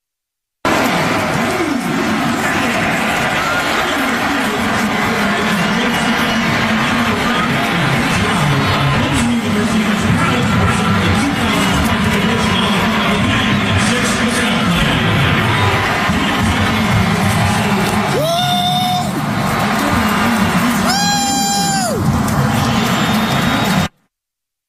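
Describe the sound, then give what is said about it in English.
A stadium crowd cheers in a loud, unbroken roar that never lets up, with two short tonal blasts rising out of the din near the end, during halftime as a man walks out to midfield with Governor McMaster of South Carolina. “I mean, the crowd went nuts.”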